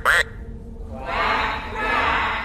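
A children's talking toy plays a duck quack: a brief sharp click, then two raspy, drawn-out electronic quacks in quick succession, fairly loud, with no other sounds.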